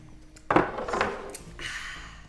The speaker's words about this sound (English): Are we doing a cheers or just a clink? To friendship.